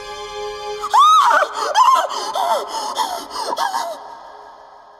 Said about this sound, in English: when she reached the stairs, she stopped short, her hands pressed to her mouth, and then she started to scream.